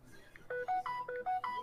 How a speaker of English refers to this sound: Damn, the double notification on that one.